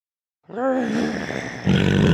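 A single annoyed animal growl from Biluhan, directed at Zain the clouded leopard, starting as a low, wavering voiced rumble and turning harsher and raspier near the end. It is moderately loud, with no talking around it.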